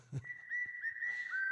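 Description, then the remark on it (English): A person whistles one sustained, steady note lasting over a second, clear, with a slight pitch bend near the end and a brief thump just before it starts. “A whistle, please.”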